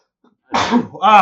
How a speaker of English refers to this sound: the classic sneeze break.